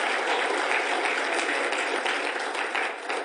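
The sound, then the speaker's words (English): An audience claps together in sustained, dense applause as praise to the Lord, holding steady for several seconds before easing slightly at the end. “Can you give the Lord a hand clap of praise?”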